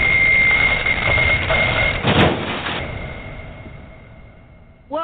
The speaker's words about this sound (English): The Wonder Wheel has come to a screeching halt, throwing Max and our team in every direction.